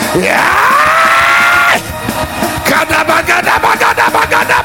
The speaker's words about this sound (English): Come on, scream like your voice is yours and praise God Almighty.